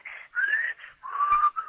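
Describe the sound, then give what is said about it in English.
A person whistles a brief, wavering tune of a few sliding notes, fairly clear, with short gaps between phrases and no talking. “Right now, whistle.”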